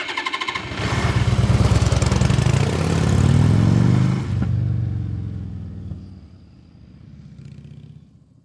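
Heavy engine-room machinery of the HMS Games roars up loud, a dense mechanical rumble that drops after a few seconds into a lower, steady drone with a faint whine.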